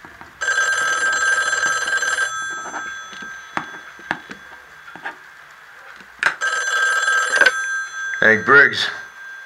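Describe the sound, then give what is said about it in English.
An old-fashioned telephone bell rings twice, each long metallic trill fairly loud, with a quiet pause between rings; a short spoken word follows right at the end. “What he couldn't have seen were the two looming phone calls that would change everything.”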